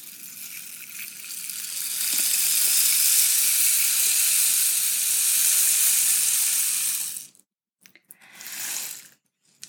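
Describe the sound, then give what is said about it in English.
A rain stick, used as a show transition sound, pours out a steady, hissing cascade of tiny rattles that swells over two seconds, holds, then stops abruptly, followed by one brief, softer shake. No one speaks. “In episode 1, I introduced my rain stick transition music and singing bowl soundbite for my show.”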